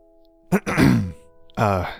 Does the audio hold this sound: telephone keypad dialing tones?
no